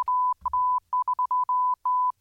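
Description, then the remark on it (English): A single steady, high-pitched beep keys on and off in a rapid Morse-code-like pattern of short and longer pulses, clear and fairly loud, with a brief low rumble at the start. “We're not again. Morse code.”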